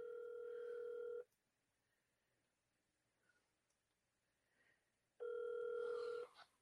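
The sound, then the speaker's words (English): A phone line ringing on the caller's end: two long, steady electronic ring tones about four seconds apart, loud, with near silence between them and no one talking. “Okay, call, please. Get him on the phone.”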